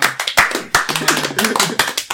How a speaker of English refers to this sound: We are clapping everybody who comes into the show.